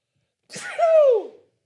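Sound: sneeze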